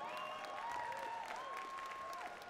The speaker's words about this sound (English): Why are you clapping for that?